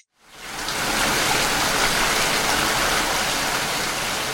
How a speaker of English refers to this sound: cue the rain music.